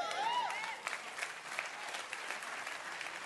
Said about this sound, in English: Hey, how are you clapping? You got your hands together.